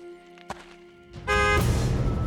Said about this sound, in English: A car horn momentarily deafened her.